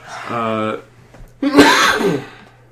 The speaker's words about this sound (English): Bless you.